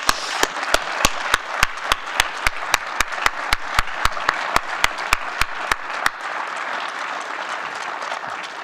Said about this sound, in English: But most of all, I have my family. I want my family to stand up. Let's give my family a round of applause.